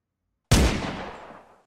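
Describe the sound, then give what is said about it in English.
A single loud gunshot fired close by, a sharp explosive crack that breaks the silence and rings out in a decaying echo for about a second. No voices. “The gunshot was so close, the sound hurt worse than the bullet.”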